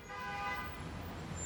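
A car horn blares in one long, loud, steady honk as the car barrels toward a man, fading after about half a second and leaving a low rumble of road noise underneath.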